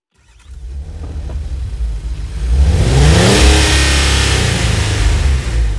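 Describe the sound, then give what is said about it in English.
A sports car engine growls low, then revs harder as it accelerates, its pitch sweeping upward into a loud, sustained roar, with no voices present. “Also, a cheetah can accelerate in speed faster than a sports car.”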